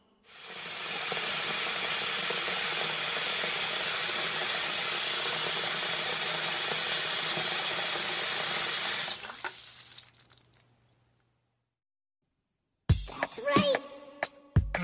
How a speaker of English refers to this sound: With water. Now it's a water balloon.